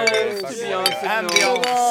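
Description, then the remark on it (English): Several beer glasses clink together in a toast, with bright ringing tones that overlap and linger. A few sharp taps stand out over the ringing, and faint voices can be heard. “You want to cheers?”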